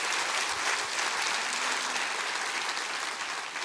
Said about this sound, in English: Come on, clap your hands real big and say amen to that.